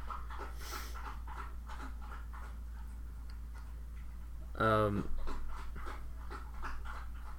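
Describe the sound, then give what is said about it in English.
A female dog drinks water, lapping in a steady, quick rhythm, faint from two rooms away, with a short whine-like tonal sound breaking in briefly partway through. “Is that your dog drinking?”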